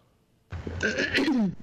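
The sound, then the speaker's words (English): A woman clears her throat once, a rough, gravelly rasp lasting about a second after a brief quiet, moderately loud, heard on its own with no talking. “She's clearing her throat.”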